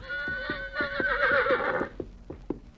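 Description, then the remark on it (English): A quivering horse lets out a loud, shaky whinny lasting about two seconds, its pitch wavering and sliding down, while its hooves clop unevenly as it slowly walks toward a small boy, continuing briefly after the whinny fades. “The horse quivered, then slowly walked toward the small boy”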